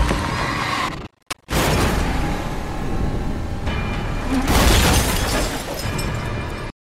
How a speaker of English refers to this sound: All right, and at that point, you get the car gets knocked off by a rock coming off the hill. Poor Hummer.